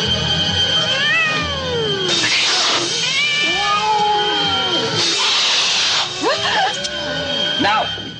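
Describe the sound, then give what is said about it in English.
A cat caterwauls in a run of drawn-out, wavering yowls that rise and fall in pitch, broken by two harsh, hissy bursts and ending in quicker, choppy cries. “No, no, no, cat! I said scream.”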